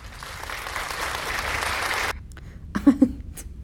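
An applause sound effect: a burst of crowd applause, dense and steady for about two seconds, then cutting off abruptly into quiet with a few faint stray sounds and a brief voiced murmur afterward.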